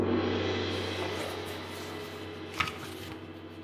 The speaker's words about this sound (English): let us sound the traditional end-of-episode gong, followed by the traditional end-of-episode opening of the magic tome